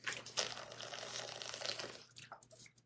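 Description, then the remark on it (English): Someone sips a drink of water: about two seconds of steady, wet slurping, then a few shorter liquid sounds as it trails off. No one speaks. “Excuse me, I had to take a sip of water.”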